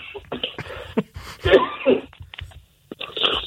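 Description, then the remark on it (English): A few rough, throaty coughs break out in short bursts, two stronger ones in the middle, surrounded by breathy throat-clearing noises with a brief pause of silence near the end. “sorry, dealing with a slight cough situation.”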